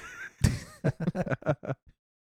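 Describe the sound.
A voice does a fairly loud imitation of the horse from Ren and Stimpy whinnying: a sharp breathy burst followed by a quick run of five or six rhythmic, pitched pulses that trail off.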